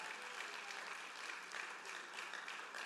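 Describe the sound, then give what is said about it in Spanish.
An audience applauds the Lord steadily throughout, a dense, continuous patter of many hands clapping at an even, sustained loudness with no voices over it. “Denle un fuerte aplauso al Señor con el corazón.”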